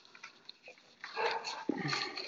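Dogs whimper and make restless, excited noises, with a busy stretch of yips and scuffling in the second half and no talking.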